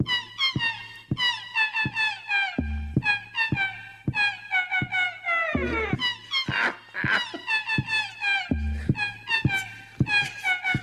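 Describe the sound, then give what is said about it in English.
A compilation of queef sounds: a rapid string of squeaky, whining bursts, each short and pitched, bending and wavering like air squeezed from a balloon, broken by a few low, dull thumps and no talking. “Bunch of queefs.”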